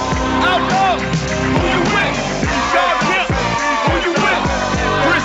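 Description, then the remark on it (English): A loud, sustained crowd response fills the whole stretch: applause mixed with a dense swell of cheering voices, steady in level without a break. The applause is for former Fighting Illini player number 34, Andy Kaufman, of Jacksonville, Illinois, fifth on the all-time scoring list. “He's not here with us today, but have a big round of applause for number 34, Andy Kaufman.”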